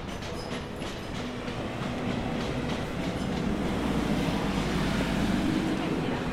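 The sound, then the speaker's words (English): A train rumbles steadily along the tracks that lead to Victoria Station in London, heard while walking over them near the Western Pumping Station in Chelsea, with a faint rhythmic clatter of wheels over track joints that grows slightly louder toward the end, without any clear talking. “So we're walking over the train tracks that lead to Victoria Station, which means that we are getting close to the Western Pumping Station in Chelsea,”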